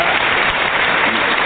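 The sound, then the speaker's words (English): A steady, dense wash of clapping from a crowd welcoming a guest on the Thinking Out Loud Radio Show, loud and continuous for the whole moment, with no voices on top and no break in the sound. “You give me an applause.”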